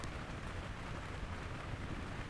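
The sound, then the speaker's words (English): Steady, dense rainfall hisses throughout, with a deep, continuous rumble of thunder underneath rather than a sharp crack, from a storm at the coast as lightning strikes just offshore over the ocean. The storm sounds constant, with no voices. “A thunderclap chased after it, one louder than any of the sky's prior rumblings.”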